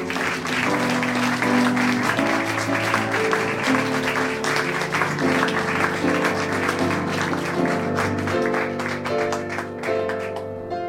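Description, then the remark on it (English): An audience claps steadily and loudly for about ten seconds as the next storyteller is introduced, a dense patter of many hands over music with sustained tones, tapering slightly at the very end. “Clap your hands, get excited for John, ladies and gentlemen.”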